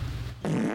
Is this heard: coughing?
no